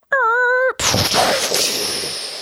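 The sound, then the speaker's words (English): A voice imitates a car crashing: a steady, buzzy engine-like hum for about half a second, then an abrupt harsh, hissing crash noise that slowly fades over the next second and a half. “Well, yeah, it's like, you know, that stupid car sound effect that I made a couple episodes ago? That one? Yeah, it went like that, and it crashed and burned.”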